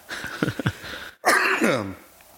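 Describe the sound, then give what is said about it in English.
Someone coughs: a few short, rough bursts, a brief pause, then one louder, raspy cough that trails off into a rumbling, throaty sound. “Sorry, I don't mean to interrupt you, but like when you start coughing, I just interject to not have dead air.”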